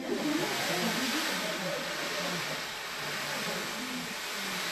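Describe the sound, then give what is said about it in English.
An ocean drum being played: a steady, hissing wash of rolling beads that sounds like surf, sustained at an even level for the whole stretch with only slight swells. “Is that an ocean drum? Yes, it's supposed to be like an ocean.”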